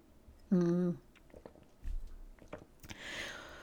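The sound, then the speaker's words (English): Quiet sipping of hot tea: a brief hummed note, a few small mouth clicks and a soft cup knock, then an airy slurp near the end. “And let me just have a sip of my tea just in case.”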